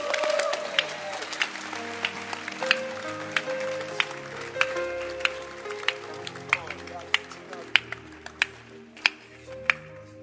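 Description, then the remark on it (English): An audience claps its hands in a steady rhythm, the sharp claps growing crisper and more regular as they go, over a murmuring backdrop of voices and sustained tones. “Can you clap your hands?”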